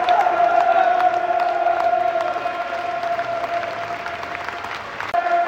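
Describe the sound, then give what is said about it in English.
Millwall fans in a stadium crowd at half time of a football match against Norwich applaud members of the armed forces walking around the pitch, a dense sustained roar of clapping with scattered whistles and cheers, holding strong throughout and swelling slightly again at the end. “Great respect from Millwall fans for the armed forces as they walk around the pitch and get great applause.”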